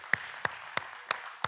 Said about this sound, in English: That's why we clap our hands on Sundays. We praise the Lord together. So let's do that.